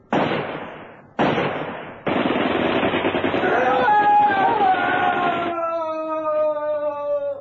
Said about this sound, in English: Lou Jagger missed, and he was hurled back over the edge of the bridge by a blast from Wally's machine gun.